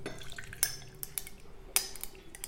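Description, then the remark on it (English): 40 ml of Campari being poured into a Collins glass of ice cubes to build a drink, with a couple of bright, sharp clinks as the cubes shift over a soft, steady background hum. “So here we go, 40ml of Campari.”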